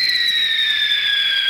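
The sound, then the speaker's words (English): An angry chimpanzee sound effect: one continuous, piercing high-pitched shriek that holds steady in loudness for over a second, its pitch sliding slightly downward, with no talking. “That was a chimpanzee, folks. That's what they sound like when you piss them off.”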